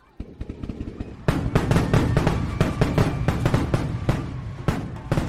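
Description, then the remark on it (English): Dense, crackling fireworks at a correfoc fire run, spinning fireworks on pitchforks set off by young adults dressed as devils inside the crowd, erupt after a quieter second, with rapid pops and sharp bangs overlapping continuously alongside a sustained hiss, loud, with crowd noise underneath. “Insanely, they set off their fireworks inside the crowd of people.”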